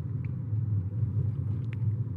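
A steady, low rumble of highway traffic rolls on without a break, a deep continuous drone with a faint hiss above it and a couple of brief higher ticks.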